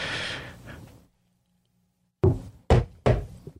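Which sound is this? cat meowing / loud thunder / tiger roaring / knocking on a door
knocking on a door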